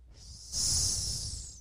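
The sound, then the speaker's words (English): A person does a comedic gay snake impression with a loud, sustained hiss, a steady airy sound that starts abruptly after a short quiet moment and holds for about a second. “It's my gay snake impression.”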